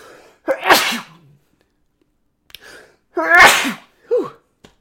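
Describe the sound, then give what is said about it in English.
Two loud sneezes a couple of seconds apart, each a breathy intake bursting into a harsh, explosive spray, followed by a short sniff or gasp. “Was nobody out there going to say God bless you?”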